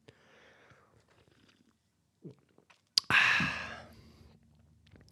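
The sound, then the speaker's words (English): A single loud slurp of hot morning coffee, a sudden hissing intake of air and liquid lasting about a second before trailing off, with faint mouth and cup noises before it. “Let me just have a little slurp of my morning Java.”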